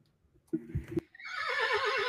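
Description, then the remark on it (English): A short low snort or grunt, then a loud horse whinny with a shrill, quavering, wavering tone that holds steadily to the end. No one speaks. “Various horse sounds.”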